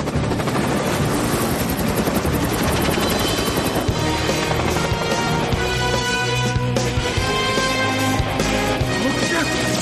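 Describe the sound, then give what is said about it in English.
A helicopter roars overhead, its rotor chopping in a steady, loud rhythm that fills the whole clip, with other busy action sounds and indistinct voices layered underneath. “Or maybe not, Chuck, because I hear a chopper, and that could be one John Casey.”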